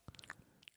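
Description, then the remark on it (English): Wet chewing with a full mouth: a quick run of soft smacks and squishy crunches over less than a second, quiet with no talking. “You're slow chewing? I'm eating the Chew Crew.”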